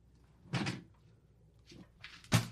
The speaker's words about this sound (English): He didn't leave. He's just grabbing something off the little hanger on his door. It's a hat. He just grabbed a hat off the little hanger on his door.